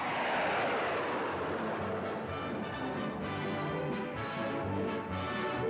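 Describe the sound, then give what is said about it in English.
A Vickers Valiant, a long-range atom bomber with four jet motors built in out of sight, roars loudly and continuously as it takes off, a dense, rushing jet noise with a high whine sweeping downward early on, no voices present. “The Vickers Valiant takes off.”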